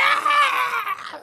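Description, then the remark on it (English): A loud, sustained shriek of a shadow monster imitated by a human voice, high and strained with a harsh, wavering tone, slowly trailing off over about a second with no other sounds. “You hear an awful shriek from behind you.”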